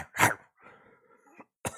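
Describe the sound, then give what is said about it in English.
Early in the morning, a person gives a harsh, throaty bark-like yelp, follows it with a low rasping growl, then lets out another short barking burst, imitating a dog. “That hurt my throat. It's too early in the morning to be barking.”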